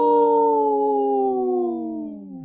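A single long wolf howl, loud, holding a steady tone before gliding slowly downward in pitch as it fades at the end. No other sounds accompany it.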